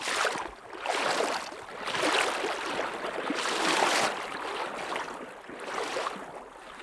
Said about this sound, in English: we slosh across to the other side. The rushing water squeezes the waders tight and cold against my legs, and I have to lean into the current to avoid toppling over.